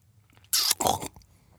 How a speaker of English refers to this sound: Uh-oh. Amanda accidentally slurped up the slug.